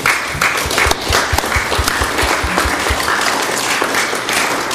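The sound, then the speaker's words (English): An audience applauds steadily, giving God a round of applause. Many hands clap together in a dense, sustained burst that stays loud throughout, with a few sharper individual claps standing out at the start. “so let's give God a round of applause for what he's doing.”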